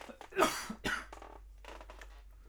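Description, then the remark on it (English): A person coughs after a bike ride: two hard, raspy bursts in quick succession, followed by softer breathy throat-clearing sounds. No speech. “Sorry, I'm coughing a lot because I went on a bike ride.”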